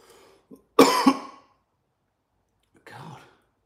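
A loud cough bursts out in two quick hacks, then after a short silence a softer, muffled cough or throat sound follows. No one speaks.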